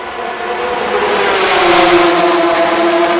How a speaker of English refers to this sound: Those are the GT cars go through.